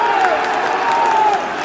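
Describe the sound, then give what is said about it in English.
A stadium crowd of Brighton fans cheering at a football match as a penalty decision goes to the VAR monitor, in a loud, steady roar that fills the whole clip, with a thin wavering tone drifting through the noise. “Why are they cheering that?”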